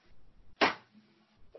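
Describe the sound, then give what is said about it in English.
A single loud, sharp thump of a head banging against a cabinet door, a hard knock that fades quickly, with only faint low rumble before and after. “You had to beat your head on a cabinet door?”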